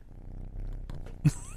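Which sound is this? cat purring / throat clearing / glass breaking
cat purring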